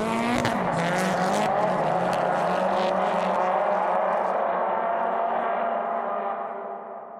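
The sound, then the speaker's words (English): A loud car engine revs hard, its harmonic roar rising and shifting in pitch for several seconds with a gritty edge, then easing off and fading slightly at the end. “You know, the noise of the car, the fumes, people around you, photographers taking pictures, video cameras, everything.”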